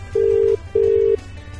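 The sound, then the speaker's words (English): A telephone ringback tone on an outgoing call: two steady, evenly spaced buzzing rings, clear and fairly loud over a low background hum, with no voices. “He's probably saying, no, you're ringing him.”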